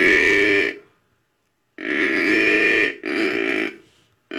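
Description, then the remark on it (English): A buck deer growls in loud, raspy bursts: one long guttural growl, a pause, then two more back to back, with another just starting as it ends. No voices. “That's a deer. Yeah, a buck growling.”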